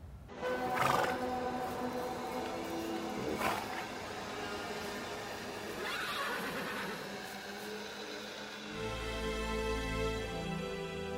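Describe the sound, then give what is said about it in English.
Several horses neighing and whinnying, their calls overlapping in a steady chorus with sharper cries every few seconds, and a low rumble joining near the end. “The loading of live horses onto airplanes to fly them to slaughter.”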